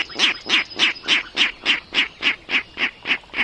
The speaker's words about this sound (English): Now there's a comical sound coming from the marsh. It's a Virginia rail, unseen but hardly unheard, ringing in the new season.